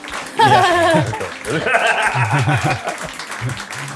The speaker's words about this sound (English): Can I hit the applause button? Which it's one? It's this one right here. Don't hit it. It's the purple one. Okay. It's the one right here. Hit all of them.